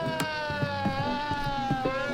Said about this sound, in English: Then, without warning, the wailing siren of an old-timey Black Mariah sounds at full volume. The thief takes off.